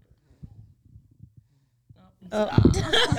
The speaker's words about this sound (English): In case you guys never heard a baby snore.